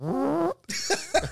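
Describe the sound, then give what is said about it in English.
A loud, buzzy fart with a wavering pitch lasts about half a second, then after a brief pause comes a noisier, sputtering burst with a couple of pops. There is no talking. “Sorry for the farts.”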